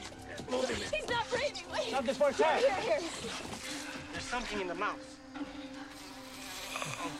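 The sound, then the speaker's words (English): A wasp buzzes in a steady, low drone throughout, sitting underneath excited overlapping voices of people talking. “A snake thing. Wasp. A wasp? Deadly. Poisonous.”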